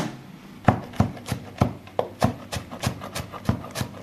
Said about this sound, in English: I'm chopping the coriander for the baba ganoush.